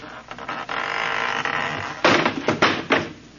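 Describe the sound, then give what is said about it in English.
A wooden door on a porch falls right off its hinges as it is opened: a long rough creaking scrape, then a loud crash followed by two or three clattering thuds as it settles. No one speaks. “That door need a little tightening up, too. It fell right off.”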